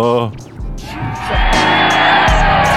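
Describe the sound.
A loud burst of crowd applause and cheering swells in after a brief voice, with whoops rising above the clapping and the roar sustaining to the end.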